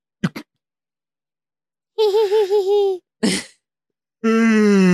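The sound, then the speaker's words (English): A person yawns aloud, fairly loud: a wavering, drawn-out yawn, a short breathy gasp, then a longer yawn sliding downward in pitch, after a couple of faint clicks. “The Monday night yawns once again.”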